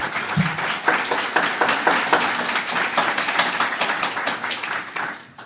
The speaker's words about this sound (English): And I will indicate you've provided us with, and I think people want to clap.